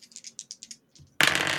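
Two additional dice are rolled during a tabletop role-playing game, rattling in a quick series of sharp clicks, a brief pause, then a louder burst as they tumble and clatter across a hard surface, landing on an 8 and a 9.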